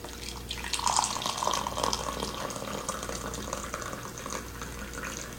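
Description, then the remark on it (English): Natural Colombia Mesa de los Santos coffee pours steadily into a cup, a continuous trickling, splashing stream that stays fairly even for several seconds with no talking over it. “Here we go, pour this nice cup of coffee.”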